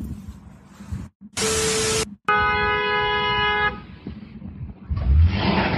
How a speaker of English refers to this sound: They're towing this dude's Jeep and he's trying to drive it off of the tow truck, but it's lifted, so... Like, it's lifted off the ground, so it's not gonna happen. Oh, wait, I was wrong. Oh, he tipped over. He flipped it over.